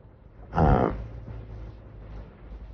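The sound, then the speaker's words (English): A gas and oxygen torch for glasswork bursts into a loud, brief roaring whoosh, then settles into a quieter, steady hiss, burning a blue flame with its candles at 1/4-inch length. “With those candles at 1/4-inch length, you hear the hissing. You've got a nice blue flame, but it's not really overly loud, and it's not in danger of popping and turning off.”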